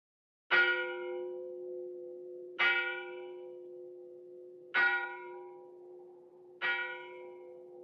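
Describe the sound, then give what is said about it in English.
A church bell tolls four times at a slow, steady pace, each strike clanging brightly and then ringing on with a long hum that carries into the next. No voices are heard. “People were summoned to church by bells.”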